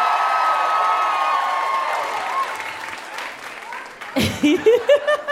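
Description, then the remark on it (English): An audience applauds steadily for a comedian, a dense wash of clapping with a few cheers that slowly thins out, before a single voice starts talking over the last of it. “Give it up for him one more time, everybody.”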